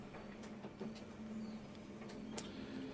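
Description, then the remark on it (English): A printer quietly whirs through a cleaning cycle, a low steady mechanical hum broken by a few sharp clicks and ticks, with no one speaking. “I got thought it was my printer's God. Just come to life behind me.”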